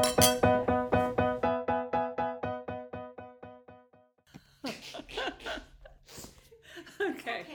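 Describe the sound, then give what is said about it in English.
A rapid run of bright, ringing clinks like glasses touching in a toast, repeating steadily for a few seconds and fading, followed by people talking and laughing. “Cheers. Cheers. Cheers.”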